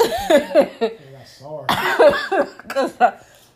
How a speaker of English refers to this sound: And excuse me, yes, you did hear me kind of do a little cough back here.